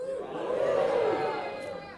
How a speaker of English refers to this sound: And so when I mention Paul the hero, I want you all to cheer and hoorah. Give me a cheer and hoorah.